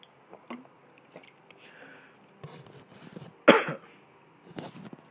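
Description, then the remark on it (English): Someone drinks water, with several soft gulps and wet mouth noises, then a sharper throaty burst midway, followed by a few more swallows. No one speaks. “Hang on, I need some water. I'm very thirsty.”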